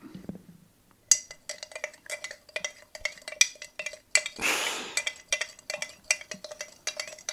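Milk is poured into powder in a container to make banana milk: a short, hissing rush of liquid midway, surrounded by quick, irregular clinks of a utensil against the vessel. No one speaks.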